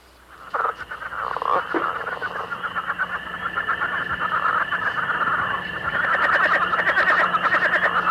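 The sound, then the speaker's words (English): A dense chorus of leopard frogs calling continuously, rapid pulsing croaks and snoring trills overlapping in a steady, fairly loud mass that builds slightly toward the end, with no voices. “You can hear leopard frogs calling in early spring.”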